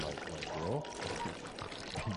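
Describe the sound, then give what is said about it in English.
Water gushes and pours steadily and loudly through a small hole in a Canadian submarine's hull, a dense rushing flow under water pressure that continues without pause for the whole moment, with muffled voices faintly mixed underneath. “How's that little hole going to hurt us? Oh, well, see, with the water pressure, it's going to get bigger.”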